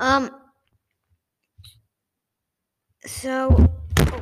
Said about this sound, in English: No, the microphone fell over. That's not good.